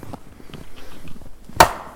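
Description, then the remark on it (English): A single sharp, loud knock on a tree trunk, made during a group hike, rings out near the end, a dry wooden thump after a stretch of faint, low rustling and shuffling. “You can do a couple more knocks there.”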